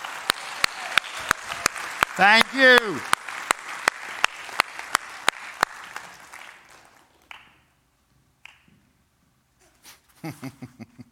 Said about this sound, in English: Can you give my volunteers a big round of applause?